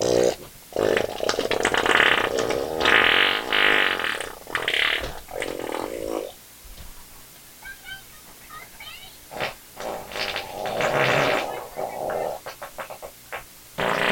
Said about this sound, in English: So this guy is just filming himself farting a bunch in his underwear around his house. Big hairy dude.